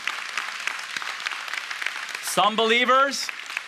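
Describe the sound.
An audience claps in response to a statement that the rapture of the church is the next prophetic event, in a steady, dense patter of applause. Partway through, a single voice rises briefly above it with a drawn-out shout before the clapping carries on.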